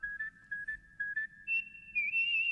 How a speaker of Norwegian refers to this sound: Neida, ta så plystre litt.